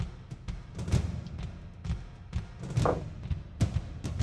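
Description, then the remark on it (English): Dice are rolled across a hard surface during a tabletop game, for arrow attacks, in several short bursts, each a quick clatter of tumbling taps and dull knocks, spaced out irregularly with brief pauses between throws. “Oh my gosh, I rolled the same on each of them, so that's only a 17.”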